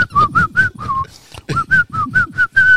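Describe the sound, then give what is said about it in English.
Someone whistles a song's melody, about nine quick, bright notes in a bouncy, steady rhythm with a brief pause midway, each note slightly breathy. “if we were singing this song together and trying to whistle that, we would be cracking up for hours upon hours.”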